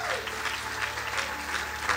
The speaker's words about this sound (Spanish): Dale ese aplauso fuerte al Señor. Dáselo fuerte.